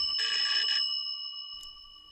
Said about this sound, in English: And of course, the public found this absolutely fascinating. They found it unbelievable. How was this possible that a bell could ring without any physical linkage?